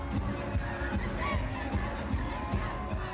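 A packed concert crowd roars and cheers steadily while live music thumps underneath with a regular beat, the whole mix loud, dense and continuous.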